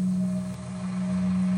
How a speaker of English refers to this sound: An old, creaking bus rounded the corner and stopped before the bench.